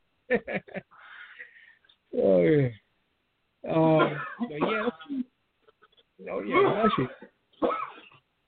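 A string of harsh, raspy coughs, loud, coming in several separate fits with short pauses between, some bursts rough and strained like a hacking, phlegmy cough.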